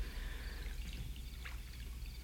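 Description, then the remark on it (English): Quiet water sloshing and splashing as a man splashes the water, with a soft burst of movement partway through over a steady low rumble of background noise. No one speaks. “He splashes the water.”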